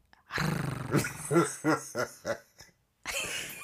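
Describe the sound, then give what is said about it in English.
A person imitates a lioness growl with a rough, drawn-out vocal snarl, fairly loud, followed by a run of short laughing bursts and a brief pause before more noisy voice sounds. “I would come back as a lion. A lioness. A lion? Yes. Because I'm a Leo. Yeah. Do a growl.”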